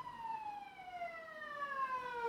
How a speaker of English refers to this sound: Just an ambulance going by.